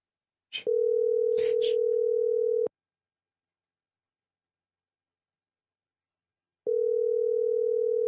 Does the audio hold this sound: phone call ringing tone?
yes